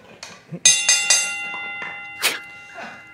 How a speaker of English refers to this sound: All right, next category, AEW Impact. Ring the bell, please.